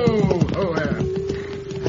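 Horse hooves clip-clop in a steady rhythm of repeated thuds as a rider arrives on horseback, with a sustained humming tone running underneath.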